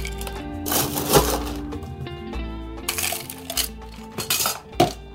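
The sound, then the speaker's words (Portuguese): Ice cubes clatter into a metal cocktail shaker in several loud bursts while a pineapple caipirinha with mint and a hint of coconut is being made, each scoop producing sharp clinks and a ringing metallic rattle, with no voices. “Gelo, bastante gelo.”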